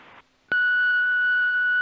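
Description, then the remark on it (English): A voicemail beep: a brief hiss and a moment of near silence, then a loud, steady electronic tone that starts abruptly and holds unbroken for well over a second. “Hello, your call cannot be taken at the moment, so please leave your message after the tone.”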